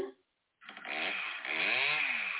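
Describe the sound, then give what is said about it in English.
A chainsaw revs up after a brief pause, its harsh buzzing engine climbing in pitch and holding loud, with a second surge of revving toward the end. “Oh, there's a chainsaw.”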